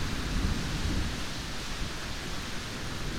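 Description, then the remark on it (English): A steady storm soundscape: a deep, rolling rumble of thunder under a constant wash of heavy rain, fairly loud and continuous throughout, with no voices. “Oh, rain, wind, thunder, fire are my daughters.”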